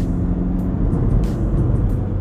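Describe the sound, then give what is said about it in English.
Steady, loud road-traffic rumble fills the whole stretch, deep and continuous like cars rushing along a busy road, with a few brief airy swishes over it and no one speaking. “I couldn't see anything, and the cars were coming so fast.”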